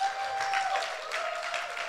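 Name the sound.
audience round of applause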